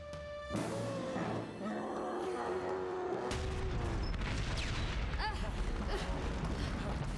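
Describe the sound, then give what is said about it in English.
A loud, chaotic elephant roar with trumpeting tones rises over crashing, rumbling booms as the elephant rampages, dense and continuous throughout. “Well, here's an idea. Stop the damn elephant.”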